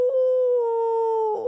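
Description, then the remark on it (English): A voice imitates a wolf howl for Wolf Spider in a children's story, one long steady sustained note held loudly for over a second before breaking off into a brief rough ending. “Everyone threw back their heads and howled.”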